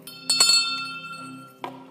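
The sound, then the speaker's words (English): A small bell rings, struck twice in quick succession and then once more, softer, a moment later. Its bright, shimmering tone lingers between strikes, with no talking. “I bought a bell.”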